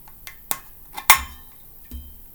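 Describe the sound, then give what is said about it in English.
A drinking glass with Oktoberfest written on it is handled, giving several sharp clinks and taps at irregular intervals, with one louder ringing knock near the middle and quiet room tone between. “I don't even know where I got this glass from. I just found it in the cabinet.”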